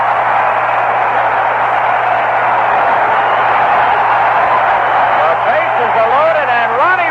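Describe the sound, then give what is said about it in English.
A baseball stadium crowd roars loudly and steadily throughout after a walk to Roy White loads the bases, a dense wash of cheering, with wavering whistles and shouts rising over it toward the end and a faint low hum beneath. “Listen to this crowd.”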